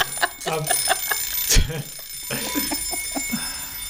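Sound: wind-up alarm clock ringing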